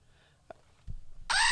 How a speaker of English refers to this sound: It's Screaming Goat. It's a goat that's mounted on this little box, and it screams. And so I hear that guy all the time, and he's the best.